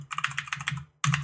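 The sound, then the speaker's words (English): Rapid, clattering keystrokes from a mechanical keyboard, fairly loud, typed in a quick burst that pauses briefly before resuming, with a low hum underneath and no one talking. “If through the episode, Brian gets quieter and quieter or just drops out altogether, it's because I've cut him out of the show because of his damn mechanical keyboard.”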